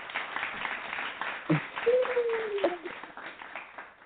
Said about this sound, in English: I'm sorry. We got two sets of applause. You're so wonderful.